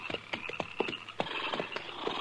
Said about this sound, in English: All right, hold it. Pull up them horses.